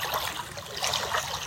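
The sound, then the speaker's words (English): Lake water of Gitchigami, the Big Lake, on the North Shore, trickles and laps steadily, a continuous bright splashing hiss with small ripples of movement and no voices. “Greetings from the beautiful waters of the Big Lake Gitchigami, our inland sea.”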